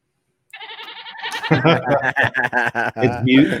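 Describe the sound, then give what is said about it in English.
Someone imitates a goat with a nasal, quavering bleat, starting thin and then swelling into a louder, warbling baa that stutters for about three seconds. “Give me a goat on that, ….”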